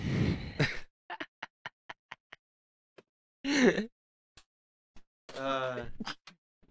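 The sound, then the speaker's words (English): One sharp, explosive sneeze bursts out mid-clip, with a breathy noise before it and a run of faint, evenly spaced ticks around it, followed by a short stretch of voice. “Bless you, bro.”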